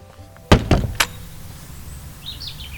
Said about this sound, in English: So the birds are tweeting. We've come outside.